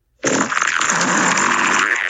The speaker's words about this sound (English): Gooey fart. Here comes a gooey fart.